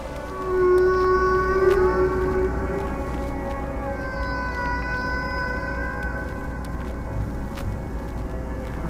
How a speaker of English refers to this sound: But the whales, deep inside those same waves, were aloof to all the turmoil at the surface, and their sounds were peaceful and serene.